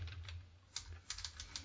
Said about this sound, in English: I hear a lot of typing over there